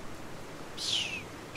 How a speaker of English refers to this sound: That was a bird flying.